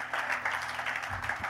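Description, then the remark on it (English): Many hands clapping together in a steady, dense patter, a church audience clapping during a service, with a faint low murmur underneath. “We're gonna clap God all service.”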